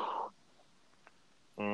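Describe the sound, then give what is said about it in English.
A voice imitates a spooky ghost moan in two loud bursts: a breathy, wavering hoot at the start, then a steady droning moan after a short silence, cut off abruptly. “Sounded like a ghost fart. That's what I was going for. It was a spooky ghost.”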